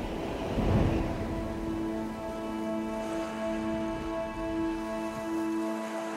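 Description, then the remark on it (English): A thunderstorm: steady rain hisses throughout, with a deep rumble of thunder swelling early on, while a sustained droning tone lingers underneath. No one speaks. “And no place did I feel it more intensely than in that storm.”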